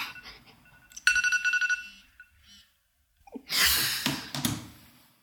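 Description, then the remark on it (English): A timer alarm rings in a quick burst of rapid, high-pitched electronic beeps lasting under a second, followed after a pause by a loud, breathy rush of noise. “That's my timer.”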